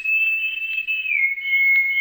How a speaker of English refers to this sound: Then, almost like a delayed echo, there was an answering whistle.